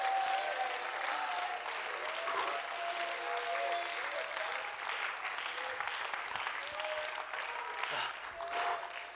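A church audience claps steadily in a dense, continuous wash of applause, with raised voices and shouts of praise to the Lord rising through it at a sustained, fairly loud level.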